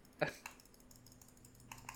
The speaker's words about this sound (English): No, it's just too much clicking. Click, click, click, click, click. Click, click, click. Wear out your mouse. Click, click, click.